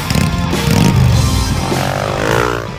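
A loud motorcycle engine roars and revs, its pitch climbing as it pulls away, filling a few seconds with a gritty, sustained rumble and no talking.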